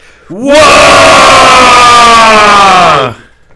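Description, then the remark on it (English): A battle cry of orcs: many voices roar together in one loud, sustained shout lasting a few seconds, swelling quickly, holding a raw, rough tone, then cutting off abruptly. “So what do the orcs and pig fuckers say when they're ready to go to war?”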